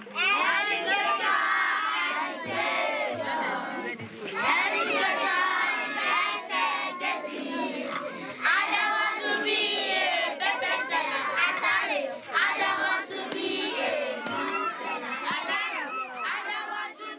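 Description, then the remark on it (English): A group of children from the Monkey Village community sing together loudly and energetically at a session, their voices bright and overlapping in a lively chant-like song that continues steadily throughout. “That was a song rendition by the children of Monkey Village at one of our sessions with them before the community was demolished.”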